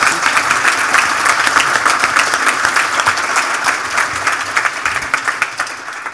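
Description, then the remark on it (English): An audience breaks into steady applause for a panel of CEOs, many hands clapping in a dense, even patter that holds at a fairly loud level for several seconds with no voices on top. “Let's give a round Thank of applause you. For our panelists.”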